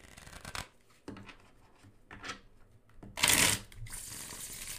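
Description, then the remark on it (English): Tarot cards being shuffled for an ASMR tarot reading, with soft papery swishes and rustles building to a louder riffling burst near the end, no voices present. “You guys can hear how these shuffle a bit.”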